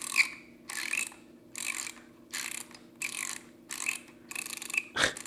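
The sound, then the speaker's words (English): Film is wound onto a developing reel by hand, with a thumb on the full roll for tension, in a steady series of about seven ratcheting bursts, each a raspy, clicking scrape lasting roughly half a second with short pauses between, ending in a sharper click. “And you're literally going to roll it. What's that thing squeaking?”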